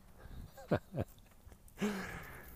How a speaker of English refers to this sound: There's a little dog behind a fence barking at us. Once again, the dogs are jealous of Bud, because Bud has an owner that just walks him regularly.